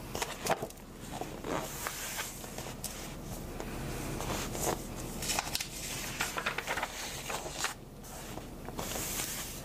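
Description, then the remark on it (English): Pages of the Taste of Home Holiday Open House magazine, with 118 recipes, flip in quick succession. The turns make a steady run of papery rustles and crisp swishes, with short crackling snaps between them. No one speaks. “Magazine Flip Through”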